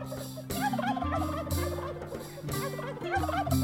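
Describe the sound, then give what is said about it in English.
Rapid, warbling turkey gobbles repeat over a steady, rhythmic musical backing, fairly loud, with bright bursts marking each beat. No one speaks. “it's time to learn the legend of the Quirky Turkey. It's a forgotten tale from long ago, and it all started the night of the Gobble Gala”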